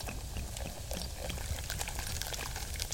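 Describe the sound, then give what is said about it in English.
Fizzy mineral water from a mountain spring being poured, a steady liquid rush with crackling, popping bubbles scattered across the whole three seconds at an even level, with no voices. “Fresh bubbling mineral water from the mountain spring.”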